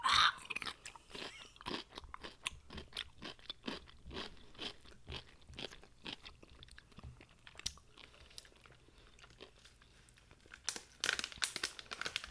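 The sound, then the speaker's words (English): A crunchy pickle is bitten and chewed, giving a steady run of sharp, wet, crackling crunches with short pauses. A louder burst of crunching comes near the end, and no one talks. “Another pickle. This one screamed a little bit for a moment.”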